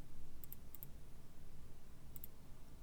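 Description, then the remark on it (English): Small chance dice being rolled for a game check clatter with a few light, sharp clicks in quick pairs, a cluster early on and another near the end, over a low steady rumble. No one speaks. “So, oh, and roll me the slowdown. The slowdown? Oh, right. My chance dice.”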